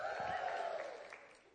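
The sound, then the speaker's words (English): An audience cheers together on a speaker's cue, a loud burst of mixed voices that holds briefly and then fades steadily lower over about a second and a half. “All right, if I say something you like or that you've done before, just cheer.”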